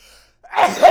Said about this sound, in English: That's good. I like doing a loud, exaggerated sneeze. I exaggerate my sneezes slightly to that was slight? Yeah. I'll put a little bit of flourish on them so that they don't seem as enormous as they actually are.